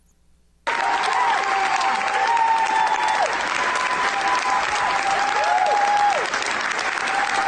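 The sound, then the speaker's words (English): A large crowd in New York breaks into sustained applause and loud cheering after a brief silence as the governor signs a bill, with whistles and shouts rising above the steady clapping throughout. “So that was everybody cheering in New York 2 days ago when the governor signed the bill.”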